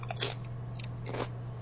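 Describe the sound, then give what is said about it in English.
Someone crunches tortilla chips with salsa, three or four crisp, crackly bites in quick succession over a steady low hum, with no talking. “Oh man, I do not recommend loading up all the salsa at once.”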